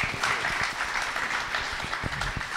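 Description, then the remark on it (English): A room full of people claps steadily, giving God a round of applause, a dense wash of overlapping hand claps with a few sharper individual claps standing out, sustained and fairly loud throughout. “Just give God a round of applause.”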